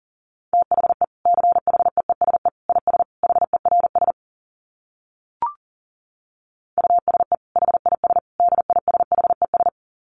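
Rapid Morse code at 40 words per minute: a steady mid-pitched tone keyed into quick dots and dashes in two long runs, split by a silent pause with one small click.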